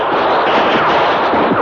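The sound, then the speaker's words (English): A loud, dense volley of gunfire, shots blurring together into a continuous crackling roar with no pauses and no voices. “Slam the door, shoot out the windows.”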